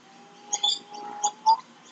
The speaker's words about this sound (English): Is that them making the weird squeaky sounds? No. Okay. Those are birds. I thought those were birds.